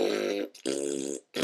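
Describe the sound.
A voice imitates the farts of big trolls in a cave: two long, buzzy, sputtering blasts with a brief gap, then the start of a third, loud, with no talking.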